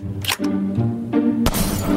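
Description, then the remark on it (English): Sharp gunshot cracks burst out as glass balls tossed into the air are shot and shatter, three loud impacts spread across two seconds, the last the strongest, over a steady droning background. “Glass balls, which when they're hit, they explode and feathers fly out.”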